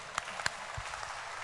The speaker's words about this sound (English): Oh, let me hear some louder clap, show some excitement.